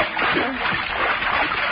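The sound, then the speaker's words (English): Steady splashing and sloshing of water as someone climbs over the side of a boat into the water to wade ashore, a continuous churning wash lasting under two seconds with no pauses. “We have to wade ashore from here. I'll get over the side and carry you.”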